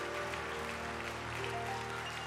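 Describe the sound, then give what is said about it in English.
A church audience claps steadily in a dense, continuous patter, with a low sustained musical tone humming underneath and no talking over it. “Come on, keep clapping.”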